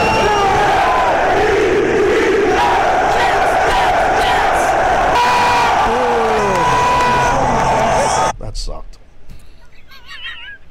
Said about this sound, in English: This is a mashup of the Jets chant and the Bengals. It's the Bengals.